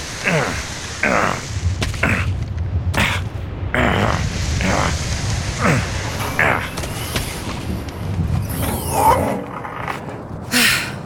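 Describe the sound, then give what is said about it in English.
A fierce storm roars steadily, with a deep low rumble beneath hissing wind and a series of sharp, booming bursts that flare up every second or two throughout. “Is this tent thing gonna hold up in the face of that storm?”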